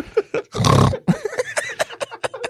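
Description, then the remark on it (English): One loud, deep burp rumbles for about half a second, preceded and followed by short, sharp clicks and brief vocal bursts. “Yes, ladies and gentlemen, we have pigs in the audience.”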